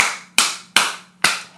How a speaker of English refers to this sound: So let's clap it up.